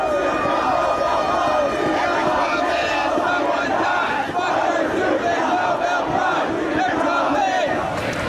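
A large crowd at an AIDS protest chants and shouts together, such as "People with AIDS won't be quiet!", in a dense, continuous roar of many voices, steady and loud throughout with rhythmic surges of yelling.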